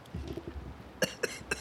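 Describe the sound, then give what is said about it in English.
A short coughing fit: three sharp coughs in quick succession, coming after a second of quiet low rumble, each burst brief and harsh. “So, sorry, I just had another coughing fit.”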